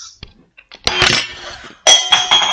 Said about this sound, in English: Oh my god, sorry, I dropped the glass.